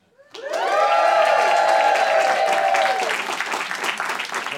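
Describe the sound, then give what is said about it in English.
A live audience suddenly bursts into loud applause and cheering, with a long sustained whoop riding over dense clapping for a few seconds before the clapping carries on alone. “Crowd always goes crazy for it.”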